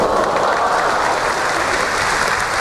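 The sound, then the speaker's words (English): Thunderous applause from a large crowd greeting author Salman Rushdie, introduced by Margaret Atwood as a surprise guest at a PEN benefit gala in Toronto in 1992, a dense, steady roar of clapping that stays loud and unbroken throughout, with no voices standing out. “That's a clip of Margaret Atwood introducing author Salman Rushdie, who was greeted with thunderous applause at a Toronto Penn Gala back in 1992.”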